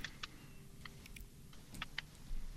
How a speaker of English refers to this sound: Are you clicking something there